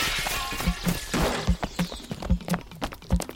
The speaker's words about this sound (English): Oh, the window's been smashed. Oh, the beautiful window.